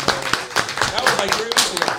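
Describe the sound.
A small group claps for a guest, a loose run of sharp, uneven hand claps close by, with voices chattering and laughing underneath throughout.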